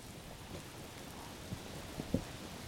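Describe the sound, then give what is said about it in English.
Soft, steady rain falls at night on a trail, hissing evenly throughout, with a few louder drops or patters landing near the end. No voices are heard. “Boy, it's a rainy night.”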